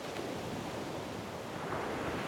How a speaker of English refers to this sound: As you're in this new rhythm, you start to notice the rhythm of the ocean.